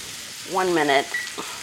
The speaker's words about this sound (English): Okay, so now I'm adding my garlic. That's a lot of garlic. Stir it up. And we're going to cook it for 1 minute.